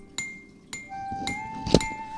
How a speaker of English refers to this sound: The sound of metal hitting metal made your mouth turn to ash.